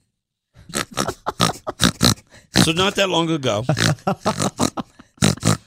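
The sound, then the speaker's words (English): A person briefly talks, then lets out a loud, drawn-out, wobbling pig-like snort and grunt imitation lasting about a second, followed by more quick speech. “Snort, pig.”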